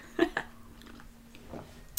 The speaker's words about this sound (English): Had a big gulp of tea.